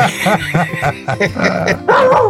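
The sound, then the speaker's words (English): A dog named Georgia barks and yelps several times in quick, uneven bursts, fairly loud, ending in a drawn-out whining howl. “Hey, speaking of dogs”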